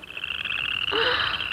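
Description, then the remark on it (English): A Western chorus frog calls loudly, a rising, rasping trill laid over a steady high-pitched chorus of other frogs, with no talking. “Now, let's hear the call of the Western Chorus Frog.”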